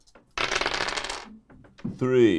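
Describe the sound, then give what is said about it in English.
Three six-sided dice clatter and rattle across a hard surface in a busy burst lasting about a second, rolled for damage against a dexterity saving throw in a tabletop game, then go quiet before a person's voice starts up. “So to do this, you're going to roll 3d6. So take the square dice, roll them, and this is going to damage people no matter what.”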